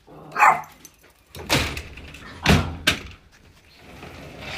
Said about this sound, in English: Hang on, let me get these girls to stop barking. Chloe, Nala, come on, come here. Come here. Come on.